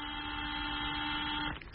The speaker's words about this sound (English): And somebody turn off that buzzer, will you?